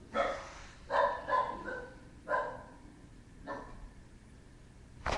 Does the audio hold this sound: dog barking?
yes